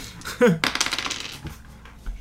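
Seven dice clatter across a hard table in a quick burst of bright rattling clicks, tumbling and skittering before settling within about two seconds, loud.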